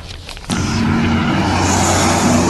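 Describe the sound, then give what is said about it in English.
A green pickup truck speeds down a road on the Tekalup Reserve with police vehicles not far behind. After a brief quiet moment, its loud engine roar cuts in abruptly and holds steady, with a low droning hum and rushing road noise. No one speaks. “this Snapchat video shows a green pickup truck speeding down a road on the Tekalup Reserve with a number of police vehicles not far behind”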